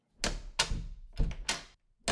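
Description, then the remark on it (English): A door is handled and opened for a visitor, Marvel editor Jordan D. White, giving a series of four or five sharp clunks and knocks spaced irregularly over about two seconds, with no talking. “Just a sec, there's someone at the door.”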